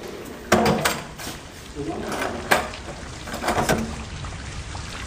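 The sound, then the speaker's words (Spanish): A door is pulled shut, with a sharp thud followed later by another knock and some fainter clatter. A steady hissing patter, like rain, runs underneath. “Ahora cierre la puerta y déjeme solo.”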